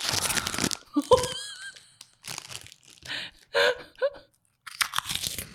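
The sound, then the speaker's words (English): Loud crunching as someone bites into and chews a crisp chip, with several sharp crackling bursts separated by short pauses, and faint voice sounds mixed in. “How is anyone going to guess from the crunch the chip is?”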